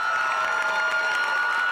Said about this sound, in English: So what do you say we get up on our feet and give a rousing cheer